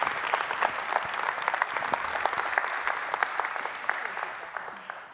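An audience claps steadily for about five seconds, a dense patter of many hands at fairly even loudness that thins slightly toward the end, with no one speaking over it.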